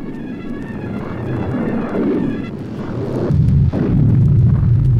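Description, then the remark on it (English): A terrible night thunderstorm with lightning roars with a steady, rolling rumble of thunder and wind noise that swells louder and deeper after a few seconds. No voices are heard. “to whom he has given everything, to wander the night of terrible storm and lightning with only the fool as a companion, confronts the elements with violence equal to theirs.”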